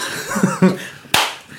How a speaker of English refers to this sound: Clap.